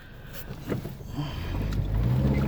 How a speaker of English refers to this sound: All right, I'm driving really fast. Like, give me a second here.